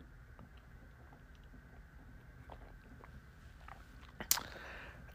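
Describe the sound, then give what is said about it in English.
Someone takes their first morning sip from a cup of hot coffee: faint mouth and cup noises, then a short slurp near the end. No one speaks. “Pardon me while I take my first sip of the day.”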